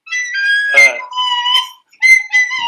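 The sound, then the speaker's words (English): A breathy flute plays a short, wavering tune: a few sustained high notes that slide and break, with airy puffs between phrases and a brief pause midway. “No, wait, you didn't hear me play my flute.”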